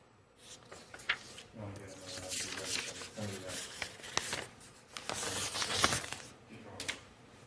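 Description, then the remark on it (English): Loud paper handling: sharp crinkling and rustling bursts as a sheet is forcefully folded in half, with some low murmured voice in the background. “Damn, that was the angriest fold of paper in half I've ever seen, dude.”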